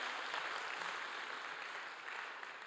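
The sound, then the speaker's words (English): Steady applause from a crowd for a testimony, a dense crackle of many hands clapping at once, sustained at an even level for a few seconds with no voices standing out. “Yes, you can clap.”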